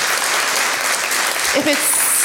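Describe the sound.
An audience applauds a speaker at the end of her talk in a dense, steady wash of clapping that holds at an even, fairly loud level, with a brief voice surfacing midway through.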